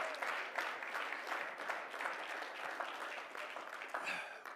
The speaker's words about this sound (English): Well, let's clap our hands and praise Him tonight.